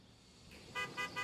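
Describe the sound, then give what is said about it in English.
A car horn honks three times in short, evenly spaced bursts, loud over a low background hum of idling traffic, signalling a ride arriving for a pickup. “Oh, that's my ride.”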